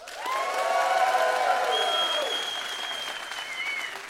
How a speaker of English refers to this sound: Okay, let's say that was a lot of applause for Trump to start. All right, so that's where we're at to begin.